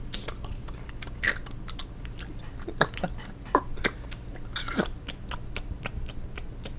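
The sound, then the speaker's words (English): Wet lip-smacking and chewing sounds mimic someone eating, done without any food as an ASMR eating example: a run of quick, irregular clicks and smacks, a few louder than the rest, over a low steady hum with no talking. “Just eat it and smack it with your lips.”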